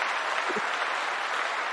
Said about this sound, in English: Round of applause. Okay, round of applause.